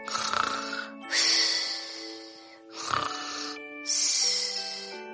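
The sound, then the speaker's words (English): Two giants sleep under a tree, snoring loudly in a steady rhythm: four raspy, buzzing breaths in a row, rising and falling about every second, with no talking. “The giants were sleeping and snoring under a tree.”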